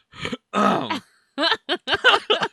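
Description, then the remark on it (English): A short rasp, then a drawn-out, low, guttural burp that sinks in pitch, followed by a string of brief throaty vocal sounds. “Sorry, I'm burping and stuff.”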